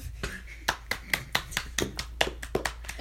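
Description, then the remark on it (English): Hands clap in a quick, steady run of about a dozen crisp, sharp smacks at an even pace, with only faint background noise between them. “Don't clap. Stop.”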